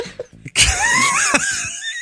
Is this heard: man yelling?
yes